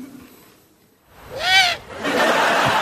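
A single loud owl hoot rises and falls in pitch after a quiet moment, followed by a steady rushing, hissing noise that continues to the end.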